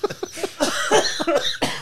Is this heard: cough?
yes